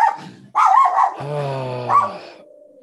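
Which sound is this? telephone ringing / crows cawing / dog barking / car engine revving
dog barking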